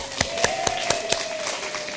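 Applause reduced to five sharp, evenly spaced handclaps in a steady rhythm, each crisp and short, over a faint continuous tone. No one speaks.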